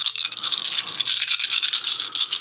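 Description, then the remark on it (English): A handful of dice rattle and clatter continuously for a couple of seconds, a dense, bright clicking with no pauses and no voices. “I think you got too many of those dice.”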